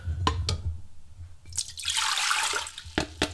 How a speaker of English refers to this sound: All right, so I've got my punch bowl here. It's a big, nice little bowl with it. It's got flowers on it. It's very cute. So I'm going to go ahead and pour in my white grape juice.